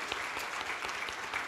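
Steady audience applause thanking a worship leader for leading worship: many hands clapping together in a dense, continuous patter at an even, moderate loudness, with no voices standing out.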